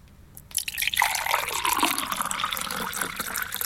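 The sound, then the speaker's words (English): Liquid is poured steadily into a container during a radio breakfast show game, where the container could be anything from an egg cup to a bucket. It starts abruptly after a brief quiet and continues as a bright, splashing stream with a slowly shifting tone as it fills. “Okay, Matt Dyson, please commence the pouring for Sally.”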